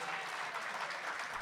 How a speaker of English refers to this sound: Yes! Round of applause for that person. Wow.